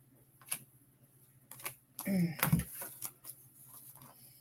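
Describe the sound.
Crisp clicks and snaps of a deck of cards being shuffled, a few isolated taps followed by a brief busier flurry, with a faint voice murmuring partway through.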